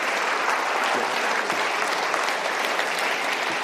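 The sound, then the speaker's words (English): A crowd at a Socrates in the City event claps steadily and loudly to welcome guest Andrew Klavan, a dense, even wash of applause that holds at full strength for a few seconds with no voices standing out. “Please put it together for Andrew Klavan.”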